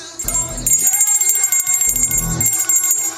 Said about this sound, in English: Now, I'm going to ring the bell when we're going to end the music. And that would be right about going to jail.